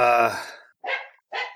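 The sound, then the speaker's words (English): A dog barks, three quick harmonic barks in a row, the first longer and rougher, the next two short and sharp, with brief silences between them. “So that's actually my dog.”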